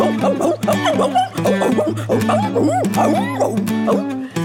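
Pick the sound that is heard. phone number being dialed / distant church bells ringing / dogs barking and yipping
dogs barking and yipping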